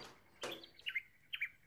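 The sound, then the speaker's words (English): A magpie perched on a branch over a backyard calls in short, fluting warbles: a harsh burst opens, then two quick mid-high phrases follow with brief pauses, all fairly faint and with no voices. “Emu tilted her head up and yelled at the magpie.”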